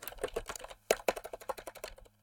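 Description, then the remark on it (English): Quick, uneven clicking of keys on a computer keyboard, a dozen or so sharp taps in a brisk run with a couple of heavier keystrokes, clear with no voices. “Well, if we had a keyboard, that had letters.”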